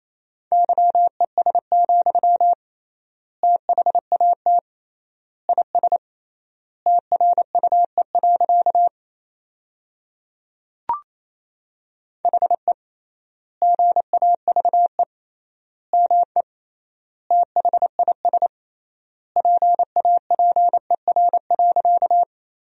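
Rapid Morse code at around 28 words per minute, sending sentences built from the top 500 words with triple word spacing: a single steady mid-pitched tone keyed in quick dots and dashes, grouped into words with clear pauses between them, plus one brief click midway.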